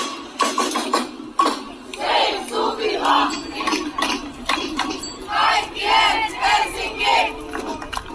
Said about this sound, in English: In early summer, demonstrators marched through an old industrial area in central Helsinki, shouting, "Save Suvilahti and everyone's Helsinki." They were protesting against plans to build an entertainment and hotel complex on a brownfield site